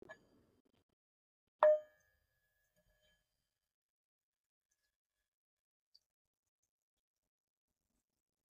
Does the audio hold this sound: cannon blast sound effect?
no